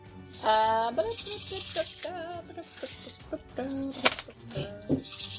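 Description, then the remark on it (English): Two dice are dropped and rolled, clattering and rattling across a surface in a quick burst of sharp clicks while several people talk and laugh over the noise. “So, again, dropping 2 dice.”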